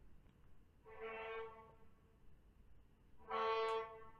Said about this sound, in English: Okay. Not just sirens, but also honking?